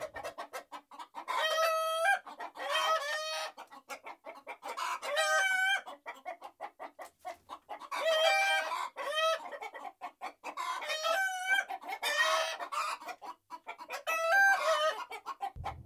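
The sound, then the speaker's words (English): A dense chorus of chickens clucking and squawking continuously, with overlapping harmonic calls and occasional crow-like bursts, from a flock of thousands of brown, white and black chickens in a chicken house. No one speaks. “I found Bogus's chicken house number one.”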